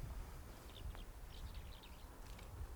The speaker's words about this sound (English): You hear those birds? Very sweet. I'm not very good at identifying birds by this sound, but it's a lovely sound.